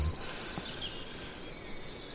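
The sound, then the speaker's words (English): A great tit sings a quick run of high, repeated notes, then a single sliding note, fairly faint, with softer twittering continuing in the background. No one speaks. “The annoying thing about great tits is they have so many song variants.”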